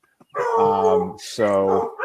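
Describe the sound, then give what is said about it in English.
A dog gives two loud, drawn-out barks, the first longer, with a brief pause between them and no other sounds around. “I believe my dog's just, we're just going to pause for 1 second.”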